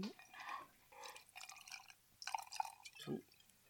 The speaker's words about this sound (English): Yeah. Nice heavy pour